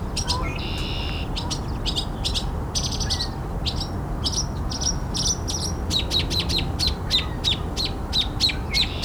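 A male northern mockingbird sings from a perch along a train yard next to a harbor, cycling through varied bright chirps and phrases in quick repeated bursts, mimicking other birds over a steady outdoor background rumble.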